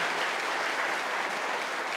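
Sustained applause from a large crowd, a dense steady wash of clapping that fills the whole stretch at an even level with no voices standing out.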